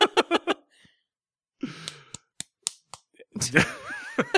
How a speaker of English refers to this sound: Slap the love into the microphone. It's the slap of love.